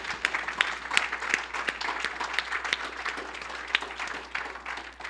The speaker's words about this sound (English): Just give the Lord a round of applause.